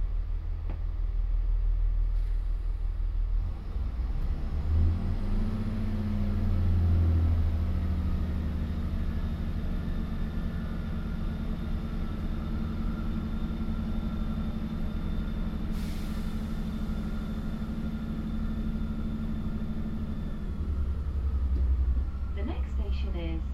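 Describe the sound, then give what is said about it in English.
Interior of a moving Great Western Railway passenger train on the service to Severn Beach: a steady, loud low rumble with a droning motor hum that rises and shifts in pitch as the carriage speeds up, with faint muffled voices in the background. “This is a Great Western Railway service to Severn Beach.”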